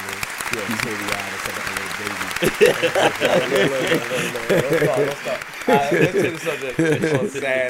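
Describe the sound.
A crowd applauds steadily for several seconds, a dense wash of clapping, while voices talk and call out loudly over it.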